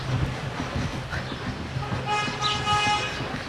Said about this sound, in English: There's a ton of traffic because there are a few hospitals around here, and I started noticing that there are a lot of ambulances.